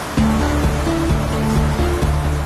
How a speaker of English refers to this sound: All too soon, the ever-steady Olifants River becomes a raging torrent.